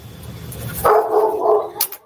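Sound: dogs barking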